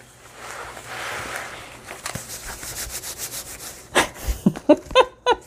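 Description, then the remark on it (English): Paper being handled while working in a junk journal made from a paper bag: soft continuous rubbing and rustling at first, then sharper crinkling scrapes and a run of quick crackly bursts toward the end, with no one speaking. “now this is Pam doing ASMR, the sound of paper and journaling”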